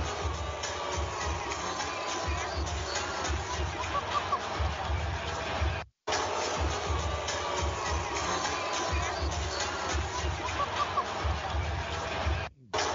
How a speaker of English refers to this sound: That's some serious booing, too. That is some serious booing.